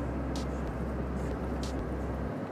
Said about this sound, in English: I'm starting to get towards the actual city itself. Once you start getting towards these buildings, traffic gets hectic.